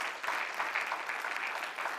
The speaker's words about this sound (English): Can I get an agreement? Absolutely. Yeah, give the Lord a clap. Amen.